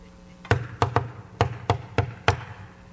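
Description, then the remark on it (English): Seven crisp knocks on a door in an uneven series, fairly loud, with no one speaking and only a faint low hum in the background. “You tapped on doors.”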